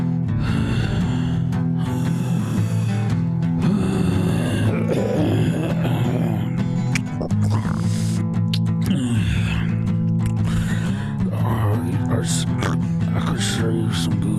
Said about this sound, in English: Labored breathing breakdown.